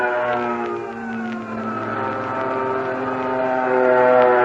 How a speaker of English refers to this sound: There goes our first fighter plane. And another.